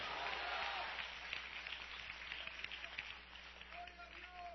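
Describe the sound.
An audience claps hands in praise of the King of Glory in a dense, sustained wash of applause, fairly loud and widespread, with a faint voice rising briefly near the end.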